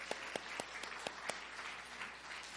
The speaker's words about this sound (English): Come on, clap.